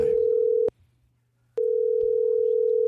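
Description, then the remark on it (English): A telephone dial tone before a crank phone call hums loud and steady, cuts out for about a second, then resumes unchanged. A faint low buzz sits underneath, and no one speaks. “don't make a crank phone call.”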